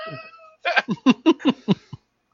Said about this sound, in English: He's a very talented cat. Verbose cat. Very promiscuous British cat. He says a lot of things.